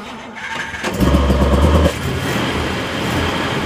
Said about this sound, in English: starting a car like this is more involved than just pushing a button. Anybody can do it in a modern car, you know, with, you know, digital, electronic, everything.